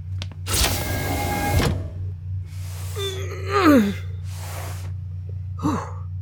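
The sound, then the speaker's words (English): A motorized vertical sliding door whooshes and whirs for about a second over a steady low hum, followed by strained grunts, gasps and heavy breaths. “You know, if those doors didn't open and close vertically, that would have been a great plan.”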